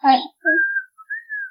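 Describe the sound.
A short burst of voice gives way to a few steady, high whistle tones, fairly loud: an ear-splitting whistle blown from the top of a tree in two or three sustained blasts.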